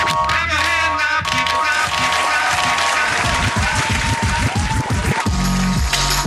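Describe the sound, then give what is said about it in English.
An audience claps steadily for about six seconds for a stand-up comedian's opening act, a dense, loud wash of many hands with no pauses, over faint tonal sound in the background. “Please clap.”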